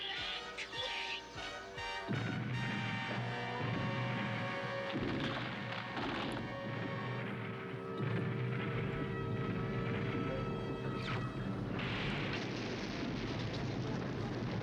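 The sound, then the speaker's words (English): Loud, continuous barrage of cannon fire and explosions in a Transformers animated scene, with repeated booming blasts layered over a dense roaring rumble and a high whining tone, filling the whole stretch without pause. “Now you will witness cannon.”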